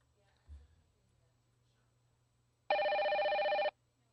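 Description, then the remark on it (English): A telephone rings once in a single loud, buzzy burst lasting about a second, preceded by a soft low thump and faint background hum on an otherwise quiet line, on a recorded call from a scammer claiming to be from the Windows Service Center. “The phone's ringing.”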